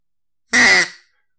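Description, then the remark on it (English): A single loud, nasal quack from a duck call, one short raspy blast lasting about a third of a second, clear with silence before and after. “I think it definitely sounds like a duck, which I guess is the desired effect.”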